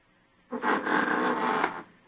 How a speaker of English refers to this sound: There goes the front door. Somebody's come in.